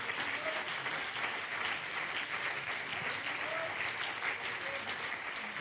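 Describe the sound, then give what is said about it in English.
An audience claps their hands in a steady, dense wash of applause that holds at an even level throughout, with a few faint voices rising underneath. “Come on, can you clap your hands with expectation?”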